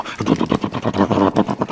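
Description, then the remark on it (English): A voice imitates the loud, lumpy idle of a big Harley motorcycle with a super loud exhaust sitting at a stoplight: a loud run of rough, low-pitched vocal throbs, about nine uneven pulses in under two seconds, with no words. “the guys that buy the big Harleys with the super loud exhaust that are just sitting at a stoplight going”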